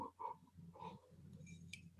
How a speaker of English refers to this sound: All right, I'm taking a sip of water.